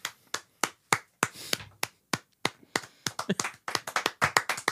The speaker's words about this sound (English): You clap for that, Black King.